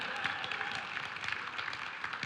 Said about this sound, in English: Yes, yes, now you can applaud.